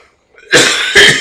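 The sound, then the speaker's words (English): Two harsh, rough coughs in quick succession, loud, the second bursting out right after the first, with a faint breath just before. “That sounds like a rough cough.”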